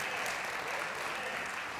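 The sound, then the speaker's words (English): A crowd gives a hand clap of praise, clapping steadily, the dense applause forming a continuous wash of many hands at once, loud and sustained for the whole stretch without any talking above it. “Come on, give me a hand clap of praise in here.”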